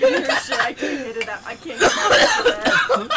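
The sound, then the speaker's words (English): A person coughs in a rough, repeated fit, harsh bursts breaking out, mixed with strained voice sounds and a bit of laughter. “Yo, the granola flip mid-cough, though.”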